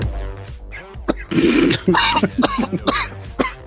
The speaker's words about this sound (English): That's a week off because he's had the shits, comes back and then just coughs in front of everyone. I the do heart apologize. Of professionalism. I do apologise. That little bit of vape went down the wrong way